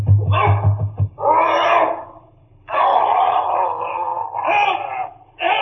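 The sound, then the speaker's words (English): A dog named Carlo attacks a man, seizing him by the throat, snarling and growling savagely in loud bursts, with strained wailing cries over a low rumbling undertone and brief pauses between outbursts. “He's got Rucastle by the throat.”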